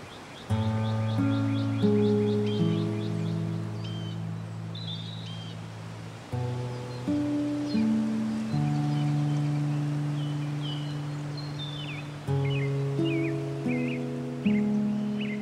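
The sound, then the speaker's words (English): Birds chirp and twitter in short, scattered calls throughout, fairly soft and set against a sustained, mellow musical drone whose chords shift every few seconds. “Marky closed her eyes and sat in silence as she listened to the birds.”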